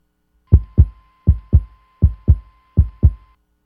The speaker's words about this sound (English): So heartbeat. Is it just tapping the microphone? It's not. Oh, it sounds like that. Okay. I mean, is it like knocking or hitting something in a pattern? They take... Oh, I can't wait to hear what this is. They take a little, like a plastic trash can,